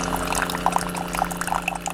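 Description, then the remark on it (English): Coffee pours steadily into a cup, a continuous gurgling trickle with small bright splashes, over a low steady hum, lasting about two seconds with no one talking. “Anyway, we're going to have some coffee right now.”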